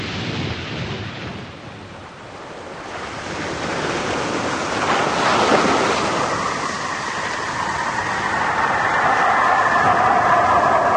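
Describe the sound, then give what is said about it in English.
A craft splashes down into the sea about a quarter of a mile off the beach with a loud roar of rushing water that swells midway and settles into a steady churning surge. No one speaks. “We're going to hit the water about a quarter of a mile off the beach.”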